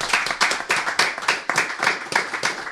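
Hand clapping at Loftus Road: a run of about ten sharp, bright claps at a brisk, fairly steady pace, loud and crisp, with no talking over them.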